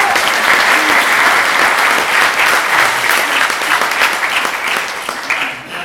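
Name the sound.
audience round of applause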